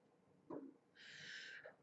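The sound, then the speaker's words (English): A single sneeze: a short sharp intake followed by a breathy, hissing burst lasting about half a second, fairly quiet, with no talking. “Bless you.”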